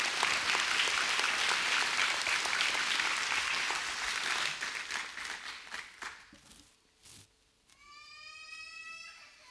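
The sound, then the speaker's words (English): A church audience applauds to welcome a couple forward, with dense, steady clapping that fades away over about six seconds, followed by a few scattered claps and then a brief high-pitched rising chirp near the end. “So can we give it a round welcome and applause”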